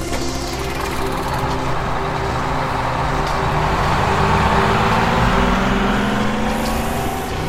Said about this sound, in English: We got into the vehicle and raced from the town.